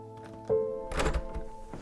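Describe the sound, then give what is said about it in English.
An unlocked door opens by its doorknob: a dull latch clunk, then a heavier rattling thump as it swings, and a softer knock at the end, all over a steady low electrical hum with no voices. “The door opened.”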